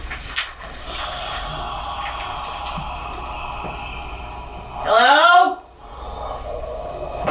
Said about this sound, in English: Doors opening.